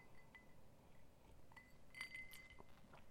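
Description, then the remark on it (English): Someone sips Ron Zacapa 23-year-old rum from a glass: a few light, ringing clinks of glassware sound over a soft, low background hiss, with no talking. “My drink of the podcast, which I'm going to take a sip of.”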